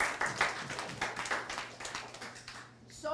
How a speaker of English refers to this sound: Thank you, guys. Sit down. Give them a clapping.